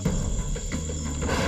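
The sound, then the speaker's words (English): A swamp monkey's low, rumbling call drones steadily and loudly for a moment as it starts to rain, over a constant high insect-like whine in the background, with no one speaking. “That's a swamp monkey.”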